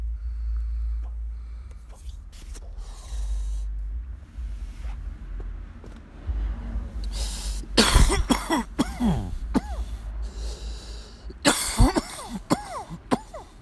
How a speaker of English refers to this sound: Yeah, I cough. I have been smoking weed for 30 years, and I've been coughing for 30 years. I don't know why.